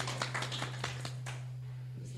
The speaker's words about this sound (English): Applaud yourselves.